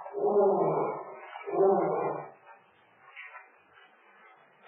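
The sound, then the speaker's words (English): A lion roars twice in quick succession, two deep, rough, loud bursts, then the sound trails off into a faint, low murmur. “Lion? Yes. Lion here?”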